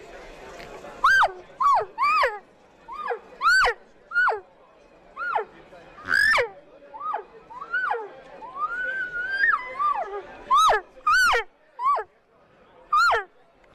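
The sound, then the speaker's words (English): Imitated cow calls: a quick series of about fifteen short, high, nasal mews, each bending up then down in pitch, loud and alone with brief gaps between them. “Here's some cow calls.”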